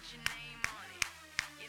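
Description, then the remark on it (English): Four sharp hand claps land in a steady, evenly spaced rhythm, each a crisp bright smack that rises clearly above a faint, murmuring background. “What are you insinuating to us by clapping?”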